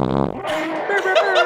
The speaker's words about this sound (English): I wish that one got to a bit faster. Two fart like sound effects.